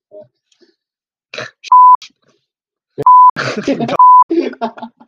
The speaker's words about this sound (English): I'll probably stop, restricting words then. I mean, I'm still going to bleep.